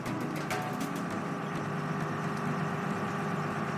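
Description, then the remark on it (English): A fishing boat engine idles steadily at 4 a.m. near the end of winter, a continuous low rumble with a mechanical hum and faint ticking, holding constant throughout with no voices. “It's 4 a.m. near the end of winter, and I'm out on the boat with Danny and his deckhand, Ethan.”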